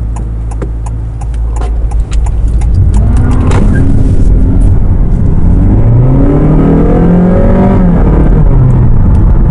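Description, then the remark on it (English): A hybrid car's engine revs loudly and continuously as the driver puts their foot down on a test drive, its pitch sweeping up and down in rising harmonic bands, heard from inside the vehicle with steady road rumble beneath, though the car goes no faster. “It did this huge rev like I was going really fast, but I wasn't actually going any faster.”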